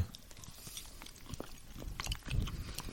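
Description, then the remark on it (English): Soft chewing of a chewy Reese's peanut butter chocolate candy shaped like a turtle patty, a steady run of moist, squishy bites and faint crunches lasting a few seconds, with no talking over it. “Very easy on the teeth and the chewing.”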